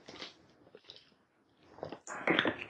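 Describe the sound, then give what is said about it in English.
Someone drinking water: a few soft wet sips and swallowing sounds, then a louder, crackly burst of gulping near the end, with no talking. “Man, that water good.”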